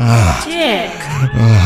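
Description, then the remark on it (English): A voice imitates heavy breathing and gasping, loud: a run of voiced, groaning exhalations whose pitch slides up and down, with no words spoken. “As they're thinking of the dick, they can hear themselves breathing hard as they're imagining taking a dick.”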